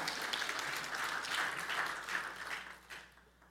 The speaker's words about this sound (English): Hey, amen, we can be clapping for that.